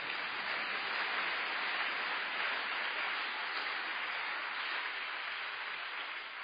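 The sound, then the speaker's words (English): An audience at a book launch claps for themselves, steadily and densely for several seconds, a continuous wash of many hands with no single beats standing out. The applause holds at a constant level throughout, with no voices heard over it. “Clap your hands for yourselves.”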